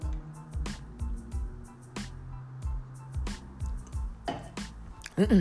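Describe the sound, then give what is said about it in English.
Someone drinks water with a steady series of audible gulps and swallows, each followed by a soft throaty sound, ending with a quick exhale. “Let me drink this water.”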